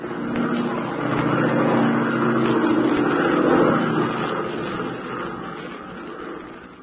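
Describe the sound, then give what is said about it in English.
An airplane engine, of a plane piloted by Tula, roars steadily during takeoff, a dense, rumbling drone that swells slightly midway and then eases a little toward the end. “Here we are in an airplane piloted by Tula.”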